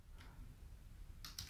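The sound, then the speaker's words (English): A few soft, irregular keystrokes on a computer keyboard, one early and a quick pair near the end, quiet against a low background rumble, as someone looks up a restaurant's locations. “You're going to hear some typing because I'm doing it in.”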